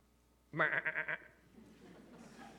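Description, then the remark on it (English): A single loud goat bleat sound effect, a wavering, pulsing cry lasting under a second, followed by faint background noise and murmuring. “For there are those that aren't sheep, the Bible says. They're goats.”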